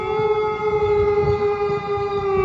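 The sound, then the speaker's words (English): A wolf howling in one long, unbroken wail that holds a steady, fairly high pitch and stays loud for the full length, with no voices and a low rumble underneath. “Is that a wolf? It sounds like a wolf, but yet there are no wolves here now.”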